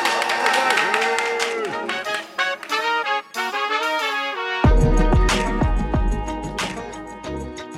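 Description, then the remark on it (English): Live audience applause at the Silver Room bursts in loudly after a few seconds of tonal, music-like sound, then holds as a dense, steady wash of clapping and crowd noise to the end. “I've never once got an applause from that.”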